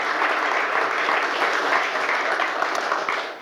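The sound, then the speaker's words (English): Sustained audience applause, a dense, steady wash of many hands clapping at a fairly loud, even level throughout, with no voices standing out, welcoming motorcycle racer Freddie Spencer onto the stage. “But another big round of applause”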